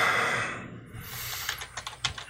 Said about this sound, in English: Hey, what is it with the mechanical keyboard?